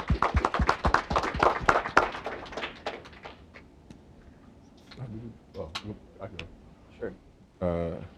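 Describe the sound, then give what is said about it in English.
A short burst of applause at an event, dense rapid clapping from a small group that fades out over about three seconds after an introduction, followed by quiet shuffling and a person beginning to speak. “Round of applause.”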